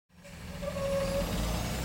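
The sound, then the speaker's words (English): A diesel school bus with air brakes rumbles, its heavy engine swelling to a steady loud drone with a brief whining squeal partway through, no voices. “The classic diesel school bus is loud.”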